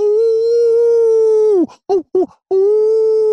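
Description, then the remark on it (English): A person imitates a coyote howl: a long, steady, loud wail held for over a second, broken by two short yelping bursts, then drawn out again at the same pitch. “Ooh, yeah, Coyote, baby.”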